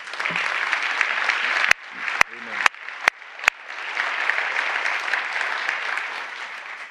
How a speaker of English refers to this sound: In fact, let's appreciatively applaud the Lord for him.